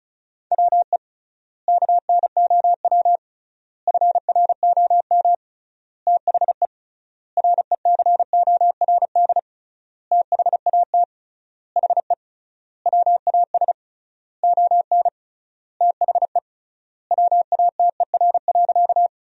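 Rapid Morse code beeps at a steady mid pitch, sent at 35 words per minute with triple word spacing, spelling sentences made from the top 500 words: fast clusters of short and long tones broken by regular pauses between words, continuing with no voices.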